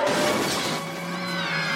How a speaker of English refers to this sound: The bus crashes. They go into the ocean.